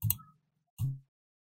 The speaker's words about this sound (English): I'm just clicking the wrong Excel sheet right and left.